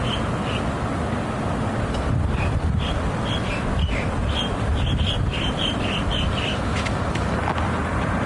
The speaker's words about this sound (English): Now this is new. When I was here 15 years ago, there was no way you would hear birds in the sky. It was so polluted everywhere. But in the past 15 years, a lot of preservation work has been done in the city. So now you can actually enjoy wildlife.